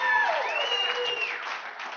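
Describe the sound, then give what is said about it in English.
Steady clapping and cheering from a small cheering section in the front row of an audience, with a high 'woo' voice rising and gliding over the applause before the clapping carries on alone. “And I just love the fact that we have the cheering section right here in the front row.”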